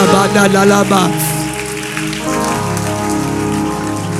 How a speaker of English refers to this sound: Hallelujah, hallelujah. Clap your hands in here. Oh, yes.